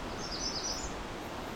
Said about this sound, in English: And for the last half hour or so, I've been listening to this Magnolia Warbler.